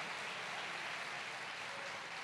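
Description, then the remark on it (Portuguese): An audience claps steadily for the children worshipping the Lord, a dense wash of many hands blending into an even, hissing roar that holds without pause from start to finish. No one speaks over it. “Vocês deveriam dar uma salva de palmas por essas crianças adorando.”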